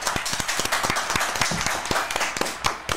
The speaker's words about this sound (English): Thank you. Round of applause. Yes. You can hear it. Yes. Hear it a mile away.